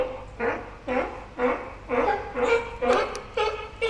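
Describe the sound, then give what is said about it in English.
A run of harsh, honking barks repeats rapidly, about seven or eight calls in four seconds, loud, the alarm call of alarmed birds related to ducks and geese, with no talking over it. “It's the alarm call.”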